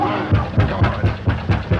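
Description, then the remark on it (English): A steady series of about seven heavy, low knocks on the door of a house in the 1932 gothic horror film The Old Dark House, evenly spaced and fairly loud, with a faint murmur of background noise underneath. “Knock again, louder.”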